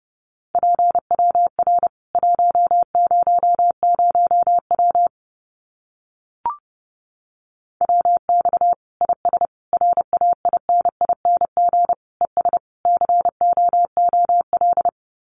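Rapid Morse code of common amateur radio QSO phrases sent as a steady mid-pitched tone, dots and dashes keyed quickly in bursts at about 30 words per minute, with a brief pause and a faint click midway, no voices.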